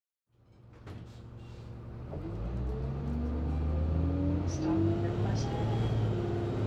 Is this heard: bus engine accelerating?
yes